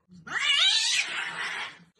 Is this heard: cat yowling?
yes